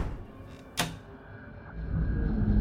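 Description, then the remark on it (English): A door shuts with one sharp thud, followed by a faint click of the door being locked, then a low rumble that slowly builds in the background. “I close and lock the door.”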